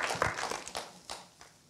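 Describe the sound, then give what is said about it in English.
A church audience claps together in a brief burst of praise to Jesus, a crackling wash of many hands with a few sharper accents, fairly soft and with no talking over it. “And church, why don't one more time, if Jesus has been your answer, why don't you lift up a hand clap of praise to him?”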